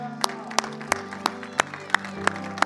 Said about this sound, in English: Jesus, we thank you this morning. Can we just give the Lord just a hand clap this morning?